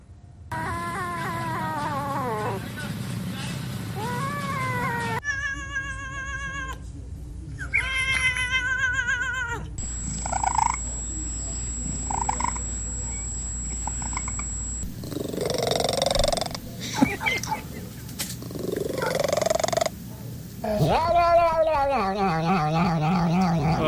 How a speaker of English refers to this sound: What the cat was doing on that one. I thought that was Donald Duck getting a blowjob for a second there. It appeared, It appears there's a cat orgy going on in Russ's apartment.